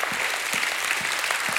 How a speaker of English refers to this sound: go ahead and give God a hand clap, a shout of praise.